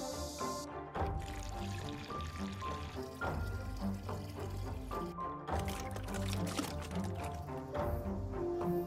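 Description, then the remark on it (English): Cooling boiled water pours steadily into a pickling pot, a continuous splashing and gurgling that runs for several seconds with brief pauses, the pitch shifting slightly as it fills. “After putting Chinese prickly ash and star anise into a pot of cooling boiled water and adding zhugong coarse grain salt, rest is a matter of course.”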